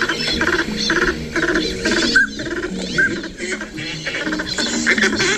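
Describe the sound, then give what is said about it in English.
Northern pintail ducks give a busy run of wheezy, raspy calls, broken by two short, clear whistles partway through: the wheezy calls and whistles of a male, with a female's buzz-off sounds. The calling is fairly loud and continuous, with no voices. “Those are the wheezy calls and whistles of the northern pintail male, and in this case, the buzz-off sounds of a female.”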